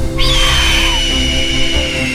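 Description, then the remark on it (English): A pteranodon's screech as it soars around the trees: one shrill, piercing cry that starts abruptly and holds steady for about two seconds, carried over a constant low rumbling background, with no voices. “The massive winged dinosaur screeched again as it soared around the trees, its flapping wings pounding through the air with a deep whoomp, whoomp, whoomp.”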